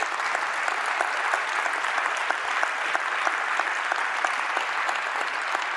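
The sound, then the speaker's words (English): Steady, sustained applause from an audience as elders come onto a stage, dense clapping that stays at an even loudness throughout without any voices rising above it. “And let's give them a round of applause as they come.”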